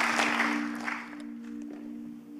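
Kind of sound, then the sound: crowd, audience applause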